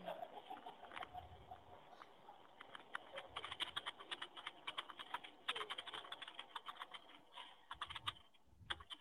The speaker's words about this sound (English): She's still typing.